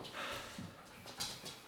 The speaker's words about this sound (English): Featuring dogs. We got a couple of doggos here. So please ignore the pouncing of claws upon the floor.